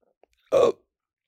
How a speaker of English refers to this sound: Oh, I just had a really bad hiccup. That caused a rumbling in my stomach.